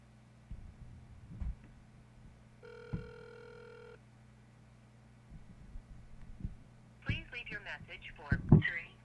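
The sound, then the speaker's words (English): A single steady burst of an outgoing phone ringing tone as a call is placed to Daniel Kino, lasting about a second, over a low constant hum, followed later by brief clattering handling noises. “You know what, I'm going to call Daniel Kino, even though I know he's not going to answer.”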